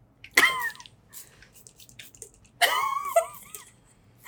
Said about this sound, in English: just sprayed holy water. Just so you know.